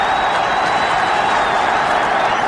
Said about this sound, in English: Roberts hounding in on it, and it's gone in! And the crowd going absolutely mad.